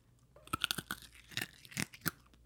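Someone crunching on a hard lollipop: a quick run of sharp, brittle cracks and crunches, about eight or nine bursts over two seconds, irregular in rhythm, with no talking.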